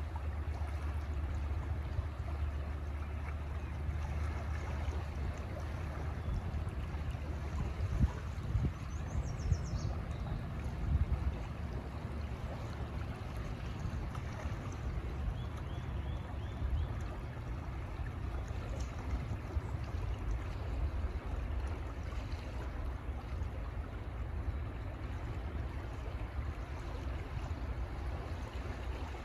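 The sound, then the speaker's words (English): Steady rushing water flows continuously, a broad, even wash with a strong low rumble, of two rivers flowing and merging into one, heard from the shore. No voices, just the constant churn throughout. “So standing here on the shores of two rivers, two distinct bodies flowing and merging into one.”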